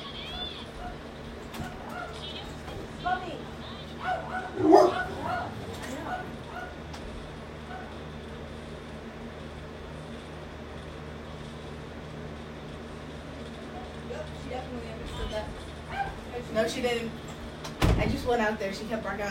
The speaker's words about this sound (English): Ignore my dog barking. You can hear it through the door.